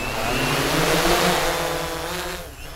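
A camera hexacopter drone's propellers whir steadily and loudly as it is held overhead, released by hand and takes off, a dense buzzing drone with a low motor hum underneath, easing slightly toward the end. No one speaks.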